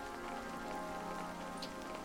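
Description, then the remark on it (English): Steady rain patters onto a hard surface, a dense, even hiss of countless drops with no pauses, moderately loud, with no voices. “But really, they just bring rain.”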